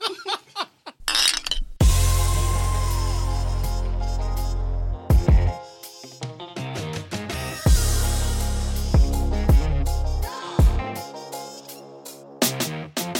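Glasses clink together in a toast, several bright chinks ringing out over a steady humming tone, with a bit of laughter mixed in.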